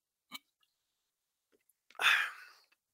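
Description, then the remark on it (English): Someone takes a drink from a bottle of Snapple Kiwi Strawberry: a brief wet click, a pause, then one louder gulping swallow with a breathy rush, otherwise quiet. “I got to take a drink of this Snapple Kiwi Strawberry.”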